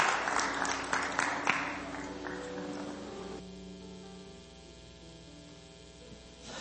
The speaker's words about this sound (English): Hallelujah, everybody. Hallelujah. Give the Lord a good hand clap.